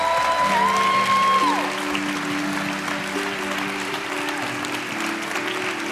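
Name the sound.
audience hand clapping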